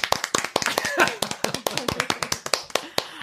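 A quick burst of hand clapping given as 'the big clap' for Stanislav Petrov: sharp, crisp claps in a fast, slightly uneven rhythm that continue steadily for a few seconds, with some faint vocal sounds mixed in early on.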